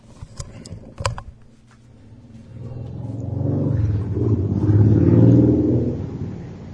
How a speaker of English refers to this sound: Someone just drove a motorcycle past my apartment.